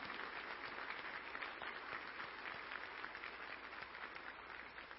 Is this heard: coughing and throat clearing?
no